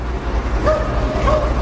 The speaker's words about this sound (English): There's a lot of dog barking doggies out there today.